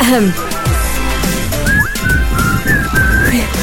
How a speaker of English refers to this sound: And whistle. Can you whistle that tune?